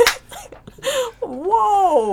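A dog gives a few short yips, then a long, wavering whine that rises and falls in pitch, fairly loud and with no one talking over it.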